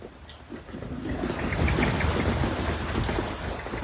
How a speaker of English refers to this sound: There is something magical in the sound of the rain gently falling onto the ground. The water nourishes our bodies and the earth beneath your feet.